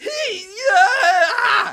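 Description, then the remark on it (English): A man lets out a loud, startled shout of disgust, "Gah!", a drawn-out strained cry with wavering pitch lasting under two seconds, voiced as a dramatic performance, as little black hair-legged creatures swarm out of his boot onto his calf. “Gah! He shouted, as the hair-like legs patted over the skin of his calf.”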